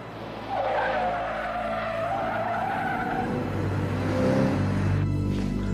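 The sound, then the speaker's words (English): A car drives hard, tires squealing in a long wavering screech over a steady roar of engine and road noise, with a deep rumble building toward the end. Nobody speaks. “It's this fucking car.”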